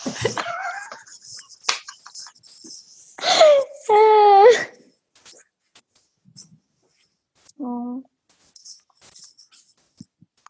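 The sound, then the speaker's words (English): A little dog at a window whimpers in a couple of short, high, wavering whines, with a brief softer whine later and scattered quiet clicks and rustles in between. “Such a little doggy up to the window.”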